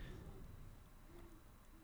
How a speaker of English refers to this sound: You got an owl out there?